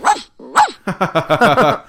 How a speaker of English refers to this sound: Thanks, Google. I like how they add those little, like, barks and stuff.